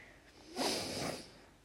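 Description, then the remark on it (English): A single heavy, breathy exhale blasts into the microphone, a broad rushing hiss lasting about half a second, loud against a quiet background, with no talking. “Oh, sorry for that breathing.”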